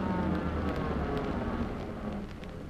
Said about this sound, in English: First car pulling up to stop.